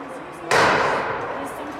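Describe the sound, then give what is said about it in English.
A heavy pane of bulletproof glass in a door window at the Capitol is smashed by someone breaking through, with a loud, harsh crash that sustains for over a second, followed by another sharp strike right at the end, over a faint background murmur. “And then eventually I saw someone break through and shatter the window on that door, which is bulletproof glass.”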